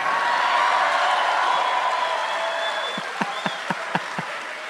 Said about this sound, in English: You knew you had an applause break coming.